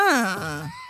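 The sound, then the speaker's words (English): A short, forceful 'mm-hmm' hum from a human voice, made deliberately aggressive, starting loud and higher, then sliding down in pitch into a strained, groaning tone before trailing off, under a second long. “And if people comment on your body, feel free to make your humming noise, mm-hmm. but make it a little more aggressive. Aggressive humming.”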